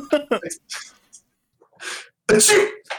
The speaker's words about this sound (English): was that a convincing sneeze?